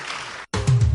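A crowd claps in a dense, steady burst of applause thanking a group of men, which cuts off abruptly and resumes with a heavier, rumbling wash of sound.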